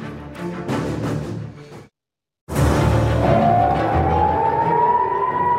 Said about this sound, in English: And right now you can hear sirens here indicating these are the warnings for incoming rockets coming from Gaza. You just heard those sirens here as I began speaking.